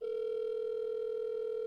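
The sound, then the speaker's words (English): A phone call being placed to a friend, the line ringing as one steady, unbroken electronic tone that holds at the same level for its whole length, with no voices over it. “Love a ringing phone.”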